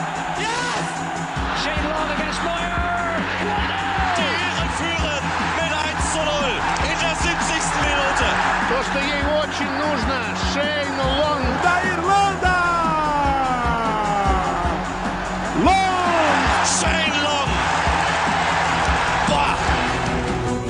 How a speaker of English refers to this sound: Let's go to Paris. Congratulations. Take the applause of that crowd.